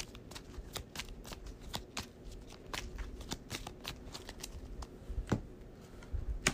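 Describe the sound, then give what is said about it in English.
A deck of cards being shuffled during a card game: a steady run of crisp, papery riffles and flicks for several seconds, with no voices over it. “So I'm going to shuffle the magnifying glass up and pray that I don't draw it.”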